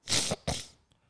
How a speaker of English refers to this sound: I sneezed. Was that even a sneeze? Salud.